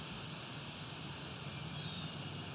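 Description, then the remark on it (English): Thin, high-pitched calls of a black-and-white warbler slowly creeping up a tree looking for bugs, faint and brief, rising a few times over a steady background hiss. No one speaks. “Slowly creeping up the tree looking for bugs while making that high-pitched sound.”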